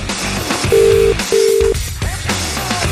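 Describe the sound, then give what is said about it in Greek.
Telephone dialing tones as a call is placed over Viber for a radio wake-up call: two steady electronic beeps, each under half a second, separated by a brief gap, sounding clearly over a busy background bed of music and noise. “Τον παίρνουμε τώρα.”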